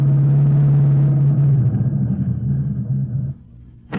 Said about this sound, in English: Let's imagine that shortly after midnight, the lead car drew up a short distance from the hideout.